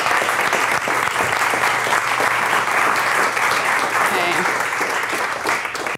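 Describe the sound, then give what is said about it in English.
Steady applause from an audience at a Long Now talk, welcoming Elizabeth Lonsdorf: a dense, even wash of clapping that holds at a constant loud level for several seconds without pause or talking over it. “A big round of applause for Elizabeth Lonsdorf.”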